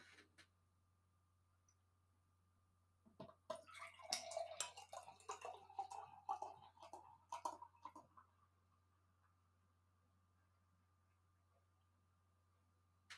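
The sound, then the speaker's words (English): Light yellow Pilsner beer is poured into a glass in one steady go lasting about five seconds, a splashy, gurgling trickle with fizzing bubbles, heard alone over a faint background hum, leaving a head about 1.5 fingers tall. “I could pour up the whole beer in one try.”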